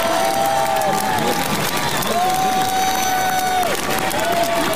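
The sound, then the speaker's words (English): A large church audience applauds as protesting women are escorted out, a dense, steady wash of clapping that holds loud throughout, with scattered cheers and a couple of long, high whistle-like tones rising above it. “Well, now there's applause because these women are being escorted out.”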